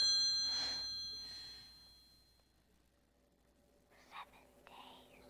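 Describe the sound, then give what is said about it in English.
A single faint telephone ring chimes at the start and fades away over a couple of seconds, followed by near-silence and a few soft, breathy whisper-like sounds. “Rachel watches the tape, and after she's done, the phone rings”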